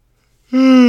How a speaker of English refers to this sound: Oh my god, sorry about that, yawn.